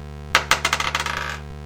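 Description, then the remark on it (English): Dice clatter across a hard surface, two sharp knocks followed by a quick, tumbling run of smaller clicks that fade as they settle. No one speaks. “All right, so this could be one more good roll.”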